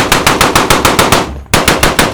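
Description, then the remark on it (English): Loud, rapid bursts of automatic gunfire hammer away in a steady rhythm, the bullets ricocheting off the metallic surface of a flying saucer and throwing sparks. The firing breaks off briefly, then resumes just as fast. No voices. “The flying saucer didn't seem to be affected at all as sparks flew where the bullets ricocheted off the metallic surface.”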